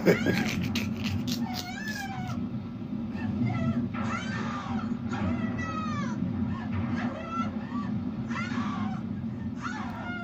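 A cat meows repeatedly and insistently in the rain, its plaintive, wavering cries coming one after another over a steady low rumbling of heavy rain.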